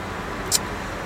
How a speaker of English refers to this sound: I'm in a truck right now. I am in my vehicle, which is a blue Toyota truck, mid-90s. We refer to him as Roosevelt, the truck.